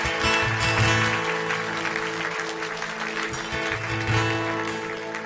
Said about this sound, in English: Let's, congregation, can we give a big clap of just praising God for those who said yes to Him?